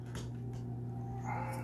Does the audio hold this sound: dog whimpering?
yes